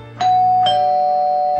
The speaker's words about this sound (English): Doorbell.